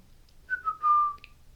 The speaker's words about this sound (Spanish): Beatriz escucha un silbato.